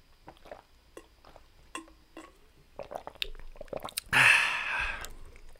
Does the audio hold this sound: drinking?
yes